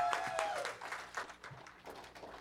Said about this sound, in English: Why don't we give her a round of applause and welcome her this morning for coming in.